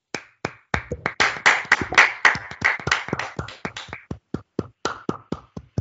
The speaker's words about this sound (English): Clapping it up for Cam.